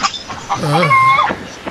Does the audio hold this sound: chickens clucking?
yes